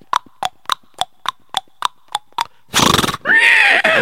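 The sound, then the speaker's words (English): A steady run of about ten sharp clip-clop beats of a trotting horse pulling a wagon is followed by a loud rushing burst and then a shrill horse neigh. “One day, he was going with his horse and wagon.”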